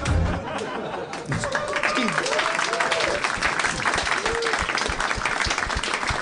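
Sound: applause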